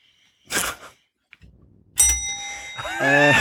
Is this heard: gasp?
no